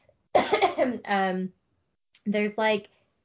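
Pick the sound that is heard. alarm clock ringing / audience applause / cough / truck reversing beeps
cough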